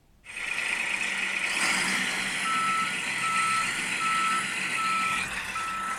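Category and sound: vehicle, truck reversing beeps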